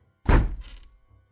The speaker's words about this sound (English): She started kicking the door in.